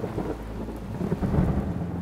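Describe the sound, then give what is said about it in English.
A thunderstorm gathering overhead: steady, deep, rolling rumbles of thunder beneath a continuous hiss of rain, swelling slightly in loudness partway through. No voices are present. “As thunderstorms start to gather overhead, he just nods to everything.”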